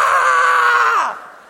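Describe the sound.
A voice imitates a boy's pained scream after he grabbed briars with his hand: one loud, sustained, high-pitched shriek lasting about a second before trailing off and dropping in pitch, with no other talking.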